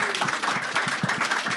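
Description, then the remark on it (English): A short, dense burst of crowd applause, with many hands clapping together at a steady, moderately loud level and no voices over it. “Round of applause, everyone.”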